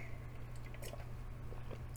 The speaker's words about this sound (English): I'm going to take a sip of water really quick. I've got like a really dry throat.